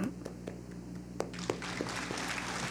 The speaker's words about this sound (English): That was a very good microphone clap. Good job.